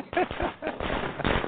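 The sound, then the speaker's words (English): A fireworks sound effect of rapid crackling and popping bursts, dense and fairly loud, running through the whole brief moment with a short laugh near the start. “Yep, there's that laugh, and there's the fireworks.”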